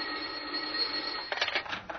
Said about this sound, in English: It was just about then that the telephone on the inspector's desk added its voice to the situation.